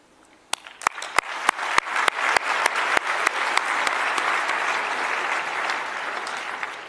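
An audience at a convention breaks into applause for leaderboard prize winners, opening with a few sharp, separate claps that quickly swell into a dense, steady round of clapping from many hands lasting several seconds.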